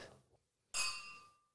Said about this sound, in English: Okay. I'll edit in the sound effect if that captured. Didn't work. Yes, you got to edit in a little clink.